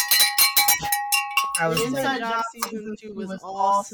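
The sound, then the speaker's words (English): A handheld bell rings rapidly, about half a dozen bright, clanging strikes over a sustained metallic tone, then stops as voices start talking excitedly. “Where's the bell? You said the word. It's right here.”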